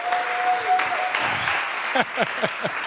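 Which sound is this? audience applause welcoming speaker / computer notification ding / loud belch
audience applause welcoming speaker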